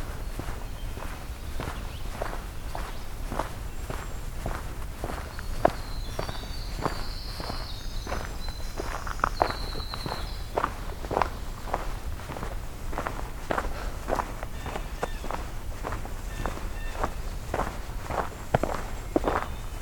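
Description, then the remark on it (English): Steady footsteps walk along a trail at an even pace, each step a crisp crunch, with a winter wren's high chirping song briefly in the background. “So much bird song here, it's hard to progress walking.”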